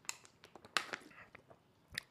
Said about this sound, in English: Sorry, guys, drink some water there.